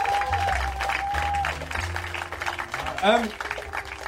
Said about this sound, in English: Round of applause for Tom Parry. Thank you very much.